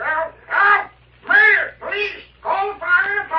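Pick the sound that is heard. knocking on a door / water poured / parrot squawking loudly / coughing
parrot squawking loudly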